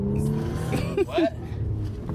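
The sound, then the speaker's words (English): A small red car's engine, the car crammed full of people, hums steadily, then briefly revs upward in a couple of quick rising surges before settling back to a steady drone, heard from inside the vehicle. “So we got a group with us today, as many people as we can actually put in this dinky little car.”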